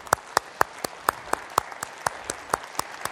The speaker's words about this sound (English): This is going to be a panel this morning, and I'm going to ask our panelists to come on out. This is a very esteemed group. You're going to love them. And let's clap for them as they come out. Yay!